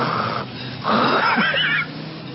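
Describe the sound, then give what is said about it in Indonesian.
A voice imitates snoring with two raspy, wheezing breaths, the first shorter and softer, the second louder and more drawn out with a whistling edge, without any talking. “Kan kalau zikir pikir panjang, kita ngorok.”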